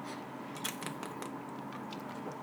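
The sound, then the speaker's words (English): Someone takes a sip of beer: a quiet run of short, wet slurping clicks and soft mouth sounds over a low steady hiss, with no talking. “I'm going to give it one last sip here.”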